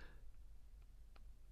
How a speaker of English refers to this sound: All right, I'm typing it here. Okay, yeah, here we go.